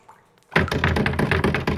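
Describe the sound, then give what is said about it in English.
After a brief quiet moment, a locked back door to a cave housing a server is rattled hard and rapidly, its handle jiggling in a loud, continuous clatter of quick knocks, with no voices. “We'll have to open the back door to get into Elon's programming.”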